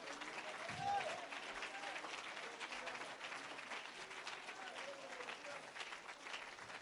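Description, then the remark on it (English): An audience claps its hands together in a steady, sustained wash of applause that runs the whole time, with faint crowd voices mixed underneath. “Oh, I wish you'd clap your hands.”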